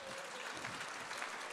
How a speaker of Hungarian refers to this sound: Most lehet tapsolni.